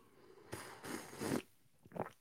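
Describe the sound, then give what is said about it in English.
Someone sips a drink, a drawn-out noisy slurp followed by a shorter second sip, with no talking; an early sip of the day. “Early sip of the day.”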